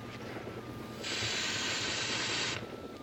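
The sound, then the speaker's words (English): A steady, bright hiss of Batman's sleeping-gas spray, aimed to put Batgirl to sleep, bursts out for about a second and a half over a low, rumbling background, then cuts off abruptly. “He does the Ace Ventura where he does the spray and it hits nobody.”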